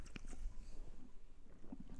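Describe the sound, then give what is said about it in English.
A quick, wet slurp of a drink: a few short sucking and gurgling bursts, fairly quiet, with a brief pause between them and no talking. “Just take a big slurp.”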